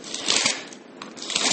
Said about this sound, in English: You can hear my pages rustling. There we go.